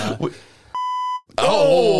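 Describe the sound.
A single loud, steady censor bleep lasting about half a second cuts sharply into a person's speech, automatically covering a swear word, with talking on either side of the tone.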